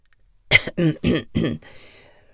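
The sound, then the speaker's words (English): A man coughs four times in quick succession, harsh, each burst rough and throaty, followed by a brief wheezy breath as the fit fades. “He coughs.”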